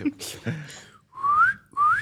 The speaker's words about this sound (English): Try it. I just did. I was like, what's your whistle sound like? My whistle? Yeah, mine's bad.